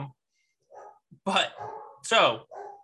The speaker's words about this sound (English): Oh, actually, all my dogs are downstairs. We don't need to pause. You can just hear them in the background. Oh. Hello, dogs. Anyway. Idiot dogs.